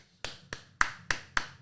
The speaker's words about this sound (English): Quick clap.